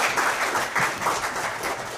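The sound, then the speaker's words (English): An audience applauding steadily as a speaker sits down, dense overlapping claps forming a continuous wash of sound that stays fairly loud and even throughout, with no voices standing out. “Give him another round of applause as he sits down.”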